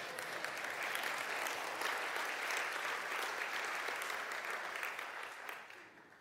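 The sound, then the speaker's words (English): An audience breaks into sustained applause, a dense, steady wash of many hands clapping at once that holds loud for about five seconds before starting to taper off at the end. “Clap for that one.”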